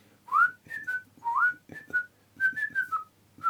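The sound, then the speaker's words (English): Someone whistles the bouncy, jaunty Laurel and Hardy tune, a quick run of short rising and falling notes with brief pauses between phrases, with no talking over it. “Do you remember the Laurel and Hardy, where they whistle?”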